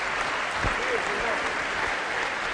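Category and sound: crowd, audience applauding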